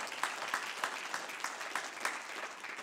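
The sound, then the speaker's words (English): An audience claps their hands unto the Lord during a sermon, a dense, steady patter of many claps with a few sharper accents standing out in a loose rhythm, and no voices. “Can somebody clap your hands unto the Lord?”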